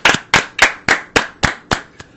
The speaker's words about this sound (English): Welcome back to Hot Take Central. Episode 60. Clap it up for that.